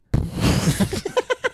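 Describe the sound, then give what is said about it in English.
A voice imitates a boat propeller: a breathy, sputtering burst followed by four quick, evenly spaced chugging puffs that trail off, performed alone with no other talk. “It's like the boat, like, chugged.”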